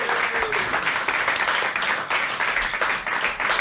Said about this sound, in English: We should say a last thank you to Prologue Cycling as well, and thank you to our audience for being here today. Give yourselves a round of applause. Thank you. Thank you.